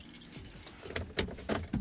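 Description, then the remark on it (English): Keys jingle and clink in several quick bursts as someone gets into their car to begin the commute home, the metallic rattles fairly bright against a faint low background hum. “As I get in my car and begin my commute home”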